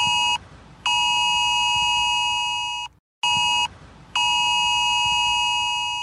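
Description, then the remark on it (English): A harsh, loud emergency alert tone from a mobile phone, part of the first test of the UK emergency alert system, blares in long sustained bursts with brief gaps, a piercing layered electronic buzz repeating in a steady on-off pattern with no voices. “Oh, it's an unpleasant sound, but that is a sound that will come out of every phone near a UK mast this Sunday.”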